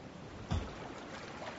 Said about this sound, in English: All right. This is nice. All right. We're going for a swim. Maybe we can drink some of this water. I guess this is the ocean, not a lake. I want to drink something.